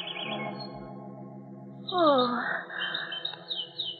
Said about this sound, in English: Those birds, I don't like them.